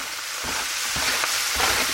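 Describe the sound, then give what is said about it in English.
Steady, loud sizzling of pork sausage browning in a pan with cut-up onion, bell pepper and jalapeno, with a few soft thumps and scrapes as the food is stirred. No one speaks. “But yes, I'm going to brown up that sausage. And while the sausage is actually browning, I am tossing in the cut up onion, bell pepper, and jalapeno to cook right into that pork sausage.”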